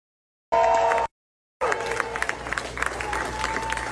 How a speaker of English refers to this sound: And, she asked... the crowd, of course, was cheering and screaming.